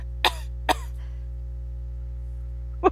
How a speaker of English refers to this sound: You know, like that her cough was in there. Like every it was a lot.